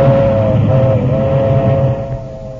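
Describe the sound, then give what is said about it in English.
A milk train rumbles past with a loud, steady low roar and a sustained humming whine riding above it, easing off slightly toward the end. No one speaks. “Dust the milk train.”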